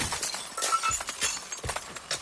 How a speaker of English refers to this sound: As the men hurled themselves upon me, I swung the cuspidor high and flung it over their heads through the frosted glass door into California Street.